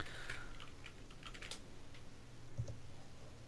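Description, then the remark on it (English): Quick, irregular clicks of typing on a computer keyboard, steady over a low background hum, with no one speaking. “What's that I hear in the background? I'm typing, you dirty boy.”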